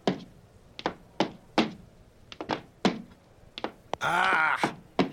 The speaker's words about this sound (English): You stepped on my foot.